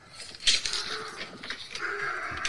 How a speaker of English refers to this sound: This is funny. That's my oldest daughter. She has a dog in the house.